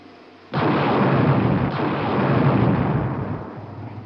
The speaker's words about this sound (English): Those small unmanned rocket ships you see leaving us will shortly be sending back television pictures as they fly near the surface.